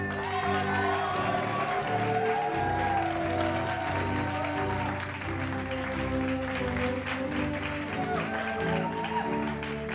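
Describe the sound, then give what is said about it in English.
An inserted sound effect celebrating a graduation with a BA: steady, dense crowd applause with cheering runs loud and unbroken for the whole stretch, layered over sustained musical tones that swell and shift beneath the clapping. “insert some pomp and circumstance and some cheering here.”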